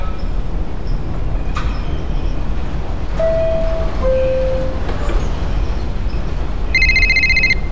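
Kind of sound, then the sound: vehicle, subway train riding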